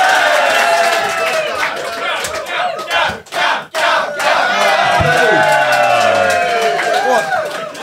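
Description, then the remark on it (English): A loud crowd, a room full of people, roars and shouts continuously, many overlapping voices yelling and cheering, with a brief dip in the middle before the uproar surges back. “Are you going to cheer him closing it?”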